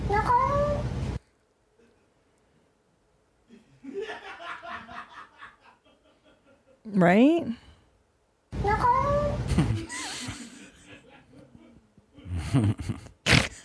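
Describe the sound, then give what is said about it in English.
A cat lets out drawn-out, wavering meows with a speech-like rise and fall, as if trying to form a word, while people chuckle and talk around it between the calls. “But I want you to listen and tell me what you think this cat is saying.”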